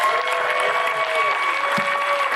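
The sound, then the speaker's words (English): The High Ridge church audience claps to welcome people watching online, a steady, dense wash of applause, with sustained musical tones and a murmur of voices running underneath throughout. “I bet if I say welcome, all of your High Ridge family that is here would welcome you with a big round of applause if I ask.”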